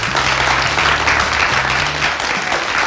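An audience applauds steadily to welcome a corporate training guest, a dense wash of many hands clapping at an even, loud level throughout, with a faint low hum underneath and no voices.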